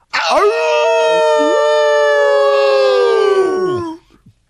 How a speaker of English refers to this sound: What a respectful howling hello from my pack brothers.